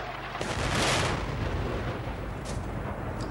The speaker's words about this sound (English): Missiles raining down from jets, heavy artillery bombarding tower blocks, civilians firing back ineffectually.